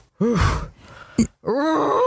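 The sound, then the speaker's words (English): An 11-year-old, half-deaf female dog with separation anxiety gives hoarse, drawn-out barks: two long, groaning woofs that rise and fall in pitch, with a short sharp yip between them. The barks are loud, and there is no talking. “So my neighbors, at least once every 3 months, report me for my dog barking.”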